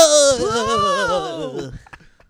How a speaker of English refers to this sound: Oh, you guys gasped in horror. I didn't see it. Can you reenact that?